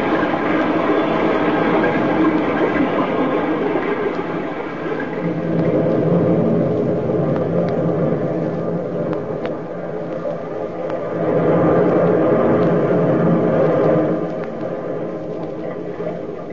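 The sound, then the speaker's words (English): A distant, steady rumble of the sea, a dense low roar that swells and eases in slow surges, heard alone with no voices. “Far away you can hear the rumble of the sea.”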